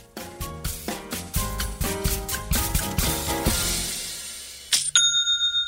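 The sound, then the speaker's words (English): A bright Shopify online-store sale notification chime: a quick run of plinking melodic notes, then a sharp ringing ding that sustains with a shimmering, pulsing tone. No one speaks. “I seriously love that noise. It's the best kind of notification and definitely one of my favorites.”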